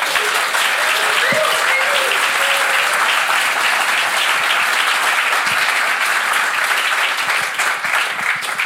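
A sustained, loud round of applause from a large crowd welcoming the author of a memoir about life on the inside, dense and steady clapping that fills the whole stretch with no talking over it.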